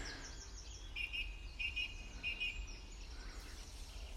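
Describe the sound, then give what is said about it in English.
A thrush, thought to be a song thrush, sings a short, repeated phrase of bright double notes, three times in quick succession, thin over a steady outdoor hiss, with no voices present. “Just admiring a, I think it's a thrush up here.”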